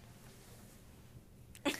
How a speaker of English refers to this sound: wait, hold on, I'm gonna sneeze.